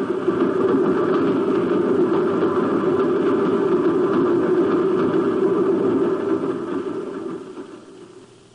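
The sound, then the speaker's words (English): Runaway train loading cars, one carrying powder, rolling along the track: a continuous, heavy rumble, a dense mechanical roar with a steady low drone, holding level for several seconds before gradually fading out at the end. No voices. “The powder is aboard one of those cars and the train is a runaway.”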